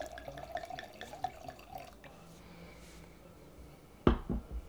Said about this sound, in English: Nothing, I was watching you pour. Because you've never seen me pour wine before.